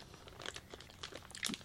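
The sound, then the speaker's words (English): Chewing of a Three Musketeers candy bar with red filling right at the microphone, with a handful of irregular, sticky crunches and smacks over a couple of seconds and no talking. “Because you can't just chew a mic”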